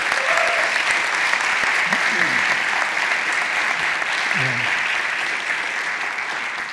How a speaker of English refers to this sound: Listen, would you just give our interns an applause, round of applause one more time?